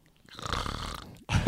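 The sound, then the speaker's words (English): A person imitates a snore: one drawn-out, rattling inhale lasting about a second, then a brief pause and a sharper, louder snort at the end. “That's snoring, man. That's snoring.”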